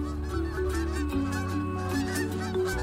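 A flock of geese honks loudly and continuously as Rocket, a dog, flushes them, many overlapping calls blending into a noisy, nasal chorus, with no voices.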